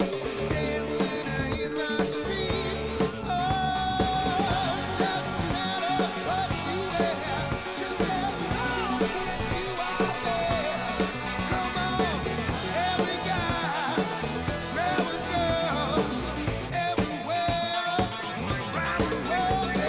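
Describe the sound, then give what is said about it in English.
A loud, dense rock song plays steadily throughout, with a strong lead vocal singing over driving guitars and drums in what sounds like a full chorus section. “that chorus is screaming out for … doing high harmony on that lead vocal”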